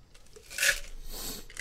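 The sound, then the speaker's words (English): Crisp crunching as someone chews on ice from a soda cup, with a bright crackling burst in the middle and more scattered crunches after, all without any speech. “The ice is so difficult.”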